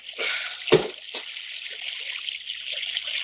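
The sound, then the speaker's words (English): A heavy rock tossed into quicksand lands with a wet, sucking splat, then a second softer plop and faint gurgles as it sinks into the sodden sand, over a steady trickling hiss of water. “That sand swallowed that rock like it was starving.”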